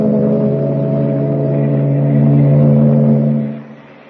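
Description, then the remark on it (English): A ship's engine drones steadily and loudly with a low, throbbing hum as the ship clears the harbor and heads for the open sea, swelling slightly before fading off near the end as it pulls away. “Meanwhile, three decks above, well out of earshot, Clark Kent waits for the boys at the shuffleboard court as the ship clears the harbor and heads for the open sea.”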